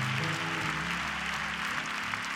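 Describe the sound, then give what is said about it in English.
A large church audience claps hands in dense, sustained applause, giving praise to the Lord. The applause stays loud and steady throughout, with low sustained musical tones humming underneath and no voices. “Clap your hands and give praise to the Lord for him.”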